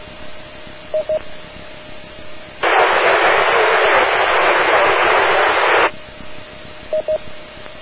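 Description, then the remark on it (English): A weak, garbled ham radio transmission from a station calling in to a net: a thin background hum with brief beeps near the start and end, interrupted midway by a loud burst of static hiss lasting several seconds, with no clear voice. “All I got is a Juliet out of there. If you can get some more power, better antenna, different position, something, try that and come on back in a minute or so.”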